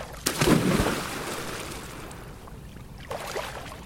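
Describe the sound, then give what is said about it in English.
Water splashes and sloshes as someone swims, a strong churning burst at the start, then a quieter lapping stretch before another brief splash near the end, like strokes through water. No one speaks. “It's day 4 of listening week, and today we're going swimming. It's just something about moving through water.”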